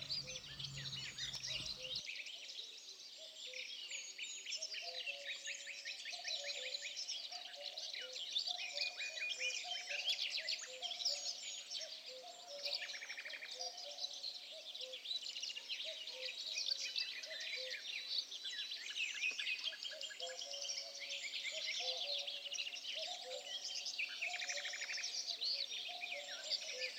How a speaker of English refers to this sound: In this way, the mineral springs, the places of healing waters, came upon the earth, bearing health and happiness wherever they rise, and accompanied always by the songs of birds.